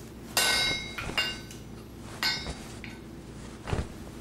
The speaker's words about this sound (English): The great arm brought down the hammer to the red-hot iron, sending sparks scattering away.